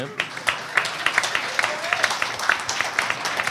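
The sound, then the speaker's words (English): A live audience in the room applauds steadily for Nintendo, many hands clapping in a dense, continuous patter that fills the room at moderate loudness for a few seconds. “You can clap.”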